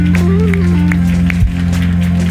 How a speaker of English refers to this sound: You're listening to First Church Charlotte. One more time, put your hands together, give the Lord a hand clap of praise.